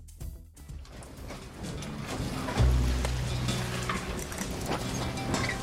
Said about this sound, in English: So we'll have ocean and something, maybe a boat creaking or something like that.